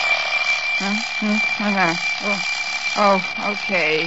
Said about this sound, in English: Okay. Darned alarm clock. I wish you'd waited for another minute.